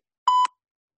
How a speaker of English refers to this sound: We now need you to cough twice when you hear the tone. Cough twice when you hear the tone.